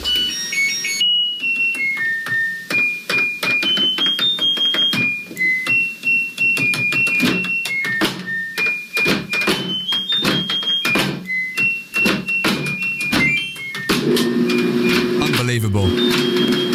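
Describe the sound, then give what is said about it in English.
A rapid run of high electronic beeps from the buttons of a Bosch washing machine, pressed in order to play a catchy melody, steps up and down in pitch, each tone set off by a sharp button click, fairly loud. “…, played on a washing machine to an impeccable standard.”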